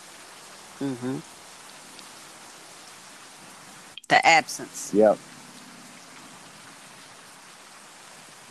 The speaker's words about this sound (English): Am I hearing rain? Okay. Well, playing in the background earlier. I don't know if you could hear that. Yes, I could.